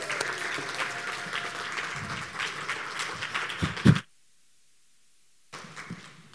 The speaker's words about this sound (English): So if you can give her a round of applause as she comes up.